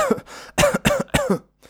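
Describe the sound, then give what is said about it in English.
A fairly loud fit of coughing: about four harsh coughs in rapid succession with short gaps between them, no talking, ending in a brief silence. “For example, you could have a fit of coughs where you can't stop coughing.”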